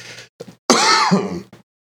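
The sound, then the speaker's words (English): Someone coughs in a short series: two quick, rough hacks, then a long, loud, strained cough with a raspy voiced edge, and a faint final catch. No one speaks. “Coughing right at the, on, you know what I mean?”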